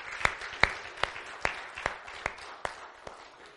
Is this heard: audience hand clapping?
yes